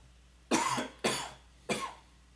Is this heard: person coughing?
yes